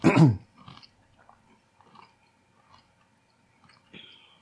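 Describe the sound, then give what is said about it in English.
A loud crunch opens, followed by several softer, irregular chewing crunches with quiet pauses between them as someone eats a honey roasted chickpea; no one speaks. “A pretty good crunch.”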